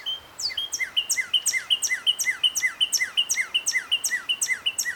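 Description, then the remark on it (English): A Northern Cardinal sings a fast, steady series of clear, downslurred whistled notes, repeated about twice per second throughout, fairly loud with no talking. “Northern Cardinal. One of my favorites.”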